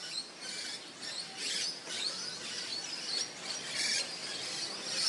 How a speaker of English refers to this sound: Wow, you can hear all the birds going nuts. Listen.